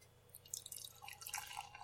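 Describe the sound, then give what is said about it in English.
Beer of 8.2% alcohol by volume being poured into a glass, a continuous splashing and fizzing with bright, bubbly crackles that swell after a brief quiet start. No one speaks. “And the pour?”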